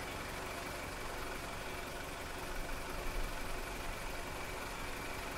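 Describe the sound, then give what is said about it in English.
A car engine labors with a steady, droning rumble, briefly surging partway through as it struggles to start. No voices are heard. “your car's not starting.”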